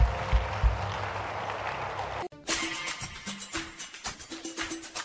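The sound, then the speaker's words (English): A crowd claps their hands in praise, first a dense wash of applause, then steady rhythmic hand claps keeping a beat of about two per second, fairly loud, with a faint tone underneath. “Come on, clap your hands and praise.”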